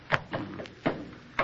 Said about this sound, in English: That's a good boy, son. Knocking the snow off your boots.